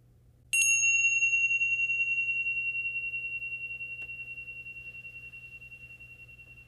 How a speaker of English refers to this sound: Now we'll end the meditation with a soft ringing of the bells.